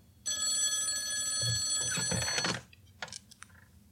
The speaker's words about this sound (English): Listeners, that's my emergency Lurking Studios phone. I have to answer it.